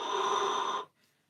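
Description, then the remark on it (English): A steady, breathy 'wind whistle' exhale pushed through pursed lips during a breathing exercise, carrying a faint airy whistle tone, held evenly for under a second before cutting off into quiet. “You're going to exhale using your wind whistle like this.”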